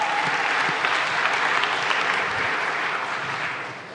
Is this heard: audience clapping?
yes